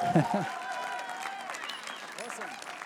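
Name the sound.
audience clapping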